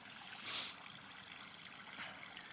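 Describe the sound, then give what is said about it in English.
Water is poured in a quiet, steady trickle into a tub to soak a plate, with a soft splashy hiss that swells briefly twice. No voices. “Got to get it completely under the water for it to truly soak, right?”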